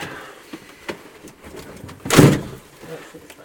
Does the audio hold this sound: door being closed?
yes